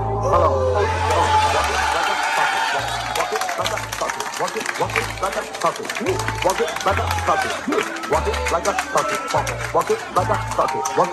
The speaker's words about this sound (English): Quentin Demps comes in, the place starts clapping